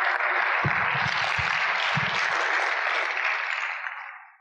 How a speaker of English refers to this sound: I think I'm going to clap whether you all clap or not.